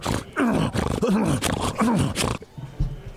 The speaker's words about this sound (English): Apparently these hogs are rummaging through garbage. They're wandering through traffic jams on the street. And they are bothering school children. And this is a real problem. The pig problem in Rome has gotten completely out of hand.